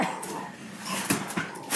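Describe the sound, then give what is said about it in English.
A dog barks in a few sharp, agitated bursts at a mail carrier putting mail through the slot, with short yips between them and a steady background hiss. No one speaks. “My dog was literally attacking the mailman.”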